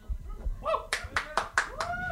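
A brief patter of applause: about five sharp, evenly spaced claps ringing out at moderate volume, with a faint voice-like murmur sounding beneath them.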